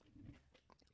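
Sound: crunchy snack being chewed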